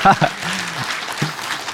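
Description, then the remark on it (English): An audience claps steadily, a dense patter of many hands. A voice sounds briefly at the start, and a low hum drifts beneath the clapping. “You can clap.”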